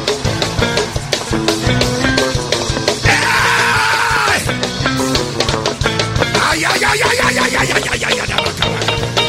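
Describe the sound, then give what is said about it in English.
A large crowd screams and cheers loudly, the roar swelling and staying dense over pounding, rhythmic music for the whole stretch. “Come on, scream.”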